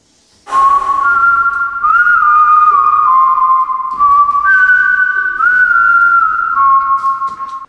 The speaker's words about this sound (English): But then, from the back of the class, a massive whistle came blaring out.